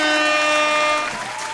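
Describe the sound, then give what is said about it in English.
Loud applause with a blaring, horn-like tone sitting over it for the first second, then the clapping carries on alone a bit softer. “The only reason why I stopped, because I know sometimes that should be hella loud and they can't even hear me over the applause.”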